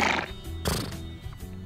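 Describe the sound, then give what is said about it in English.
A horse whinnies loudly in a show's trailer, a single drawn-out neigh with a bright burst partway through, set against a busy layered background like a film soundtrack. “I don't know what horses have to do with it, but they're in the trailer.”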